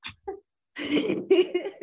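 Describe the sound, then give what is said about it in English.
A woman getting over a lost, dry and hoarse voice after a concert gives a couple of quick, breathy coughing bursts, followed by a longer raspy throat clearing with a rough, voiced rumble, fairly loud with no speech. “So now it's turned into a little bit of a cough because my voice was so dry and hoarse.”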